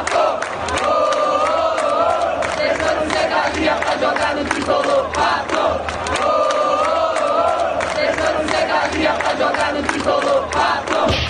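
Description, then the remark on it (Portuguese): A large stadium crowd of São Paulo supporters chants a personalized song honoring the player Pato in unison, loud and sustained, with a rhythmic melodic rise and fall repeating throughout, sharp claps or drum hits punctuating the chant. “O Pato caiu nas graças da torcida tricolor e foi até homenageado com uma música personalizada.”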